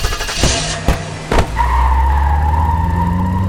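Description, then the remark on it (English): A few sharp knocks, then a car engine revs up and pulls away while a sustained high tire squeal rings out over the low rumble, loud and steady to the end. “Don't y'all drive away from me!”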